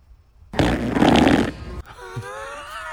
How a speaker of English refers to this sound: like I'm not hearing the fart. Well, it's certainly loud enough.